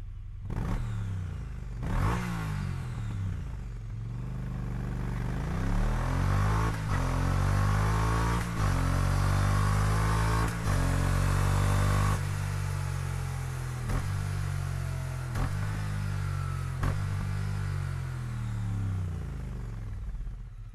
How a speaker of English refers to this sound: That's also aftermarket. Aftermarket. Okay, so I'm going to go straight up and say that is a Triumph Twin. It is. Yeah. That is a whistle. That has the whistle of a Triumph Twin.